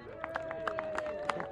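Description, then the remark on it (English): Applause from a crowd at the Senior Race podium ceremony for the third-place rider, number 15, as he gets his green hat and Forager Vintners sparkling wine, heard as a scattering of sharp, irregular claps over a steady, faint tonal hum, with a murmur of voices. “Getting a good round of applause, gets his green hat on his head, gets the Forager Vintners sparkling wine.”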